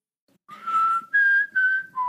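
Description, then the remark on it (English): A person whistles Rue's four-note tune from The Hunger Games, fairly loud, with sustained breathy notes that rise slightly and then drop on the final note, with no talking. “And so they do Rue's little four whistle, which I'm sure if any of you guys are familiar with the Hunger Games, it's...”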